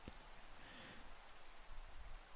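Steady rain falls in a soft, continuous hiss with no pauses, quiet throughout, with a faint patter of drops and no voices.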